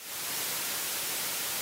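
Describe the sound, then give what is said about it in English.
A steady hiss of white noise simulating high-frequency tinnitus at 8 kilohertz, bright and concentrated in the upper range, fades in quickly and then holds constant with no voices or other sounds. “You have what we call a white noise style of tinnitus.”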